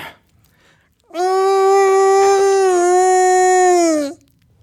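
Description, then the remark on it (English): A voice imitates a distressed hedgehog with one loud, sustained high-pitched wail lasting about three seconds, holding steady before dipping slightly in pitch and cutting off. “Distressed hedgehog sound,”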